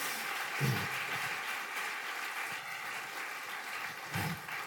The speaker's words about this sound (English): I think that man needs a round of applause, does he not?